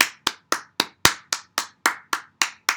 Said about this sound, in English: So, today is the 8th day of PODMAS. The 8th day. Can we please clap for consistency, please?